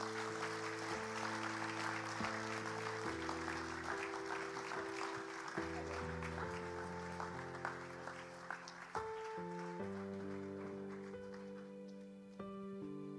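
A crowd claps steadily and warmly for several seconds, the dense patter of many hands over sustained background music, tapering off slightly toward the end.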